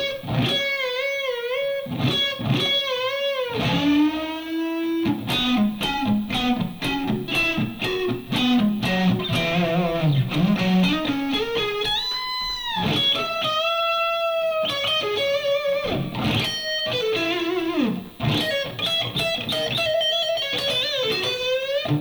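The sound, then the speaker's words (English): An electric guitar solo with a warm, rounded neck-pickup tone plays singing, sustained lead lines full of bends and vibrato over a steady beat and a moving bass line, with no voices. “Sounds like he has a Strat pickup or something, like the neck pickup.”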